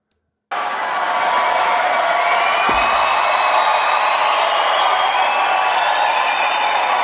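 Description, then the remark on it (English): Sustained applause and cheering from a large crowd in a played video clip, a dense steady roar of clapping with scattered whoops that starts abruptly and holds at full loudness for about six seconds. “The applause.”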